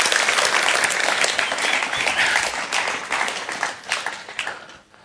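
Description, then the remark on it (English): An audience applauds loudly as three guests come up at an evening gathering, with dense overlapping claps filling the space for several seconds before thinning and fading out toward the end. “Do we give them a nice big round of applause as they come up tonight?”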